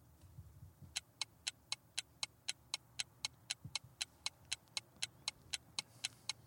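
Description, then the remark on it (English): A quiz countdown clock ticks steadily, about three sharp, bright ticks per second, continuing evenly for several seconds over a low, quiet background rumble with no talking. “Clock's ticking.”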